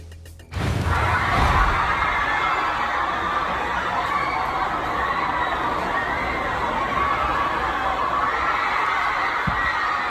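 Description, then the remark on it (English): A large stadium crowd in Miami erupts into sustained screaming and cheering as fans watch a cat being saved by a flag, a loud, dense roar that surges up suddenly and holds steady for about ten seconds. “The whole stadium is watching this transpire, right? Sounds like a roller coaster at Wonderland.”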